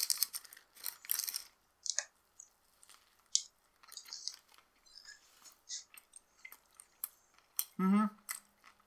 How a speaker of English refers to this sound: We're gonna include the, like, chewing sounds, right? That's the best part.